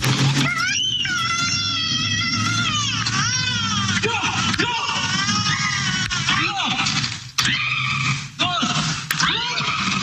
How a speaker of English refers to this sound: Now, if you hear at the end there, that's just the mom screaming for no reason. And she continues to scream for 45 seconds after that. Ungodly amounts of time.